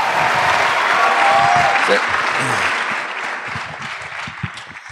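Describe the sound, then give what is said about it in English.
Loud, dense audience applause at Town Hall Seattle as a live talk with Michael Bennett begins, roaring at full strength with scattered whoops and cheers rising above the clapping before it slowly thins and tapers off toward the end. “Wow. That's loud. Was that for me? Those applause?”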